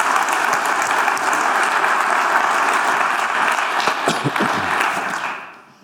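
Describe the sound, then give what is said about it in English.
A crowd claps steadily in a dense, sustained wash of applause for several seconds, with a few sharper claps standing out near the end before it fades away. “So I'd just like to give a big round of applause to those guys again.”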